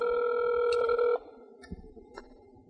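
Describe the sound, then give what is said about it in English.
A single long electronic ring tone of an outgoing phone call to a guest of the Wrestling Mayhem Show sounds steadily for about a second, then cuts off, followed by faint line noise and a couple of soft clicks. “Riveting phone.”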